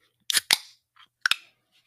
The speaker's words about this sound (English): Sparkling water. It's a little ASMR for you, huh?